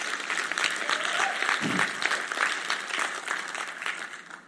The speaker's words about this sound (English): Oh, come on, if you're going to give a clap, give the Lord a good one.